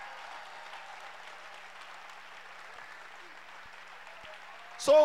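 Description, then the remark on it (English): Steady crowd applause as an audience listening to a sermon claps again at the preacher's request, a dense wash of many hands clapping at an even level for several seconds, with a sudden louder burst at the very end. “Can you clap again? Is it possible to clap again?”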